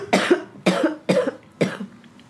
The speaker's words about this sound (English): I just, like, was trying so hard not to cough because you were making such a good point. And I wanted to let you finish.